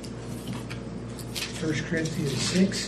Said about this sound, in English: Want to take a look at it? Yeah. I hear pages turning. Let's do it.